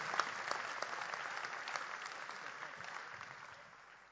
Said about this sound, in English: Clap your hands for that pastor. Clap your hands for that shepherd.